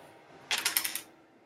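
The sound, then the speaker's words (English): A small four-sided pyramid die (d4) is rolled for a dexterity save in a tabletop game. It clatters across a hard surface in a quick burst of about half a dozen sharp, bright clicks, lasting about half a second before stopping, with no voices. “Okay, let's get a pyramid dice.”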